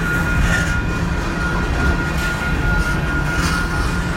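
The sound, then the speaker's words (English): A steady, loud rumble of a long train rolling past, with continuous low clattering and a faint metallic whine holding throughout, and no break in the noise. “Trying to get home from work, and I'm stuck in a long, long, long, long, long train.”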